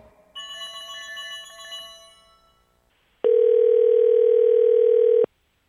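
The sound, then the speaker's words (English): A telephone's electronic trilling ring fades out, followed after a short pause by a loud, steady dial tone that holds for about two seconds before cutting off abruptly. No voices. “I think it's time for fan phone call. We'll be calling Anna.”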